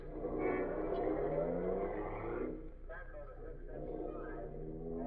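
A car engine revs up and pulls away, its pitch climbing for a couple of seconds before settling into a steadier, lower drone as it drives off.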